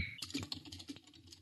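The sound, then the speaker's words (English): Rapid typing on a computer keyboard as a man types in a search question, a quick run of light clicking keystrokes in an uneven rhythm, fairly quiet, with no voices. “And he's typing in like, when does I sound like eh?”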